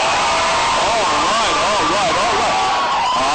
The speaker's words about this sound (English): That was the scream you just heard.